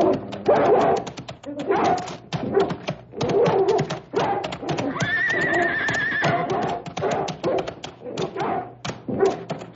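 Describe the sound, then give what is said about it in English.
A dog barks and snarls aggressively as it is turned loose to attack a man, a rapid series of loud bursts, with a brief drawn-out, whine-like cry partway through the commotion. “Please turn the dog loose. Get him.”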